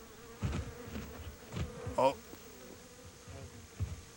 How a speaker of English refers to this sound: And what's in the bed of the truck? Oh, you hear some flies. I love that effect.